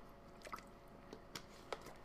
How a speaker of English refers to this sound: I gotta take a drink of water.